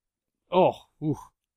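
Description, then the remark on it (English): A burp after eating a chocolate donut, in two short, voiced pushes, one right after the other, fairly loud, with brief silence around it and no talking. “That was a donut burp.”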